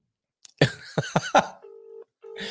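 A few brief clattering bursts give way to a steady, low electronic telephone tone that sounds in two pulses with a short gap between them, as an outgoing phone call is tried.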